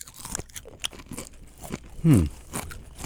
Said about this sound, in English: It's all going in the mouth, gentlemen. Toe biter. Eat your giant water scorpion.